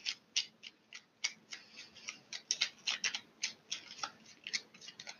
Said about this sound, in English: I'm starting to shuffle the cards again. Okay, two cards popped up.